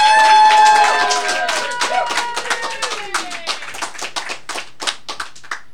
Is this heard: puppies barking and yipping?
no